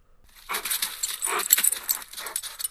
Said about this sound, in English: Get over here, hey! Get, come, get over there, bad dog. Hey, bad dog, come here.